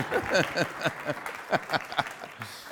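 An audience in Poole claps with dense, crackling applause for a guest speaker after a prayer, mixed with scattered whoops and voices calling out over the top, holding a steady moderate level before thinning near the end.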